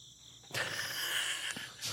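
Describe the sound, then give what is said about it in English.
Crickets chirp in a steady, dense high-pitched trill that swells in suddenly after a quiet half-second and carries on continuously, fairly loud, with no voices. “I had to give a moment for crickets.”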